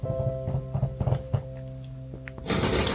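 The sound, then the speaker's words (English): A black chair creaks and squeaks as someone shifts in it, with soft irregular thumps and a short squeal, ending in a louder rustling burst, all over a low steady hum. “That's the squeakiness of the chair.”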